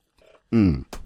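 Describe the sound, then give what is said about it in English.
A faint, brief sip of water, followed by a loud, voiced, satisfied 'ahh' with a falling pitch, then a short breathy exhale. No words are spoken. “Let me take a drink of water because I am parched.”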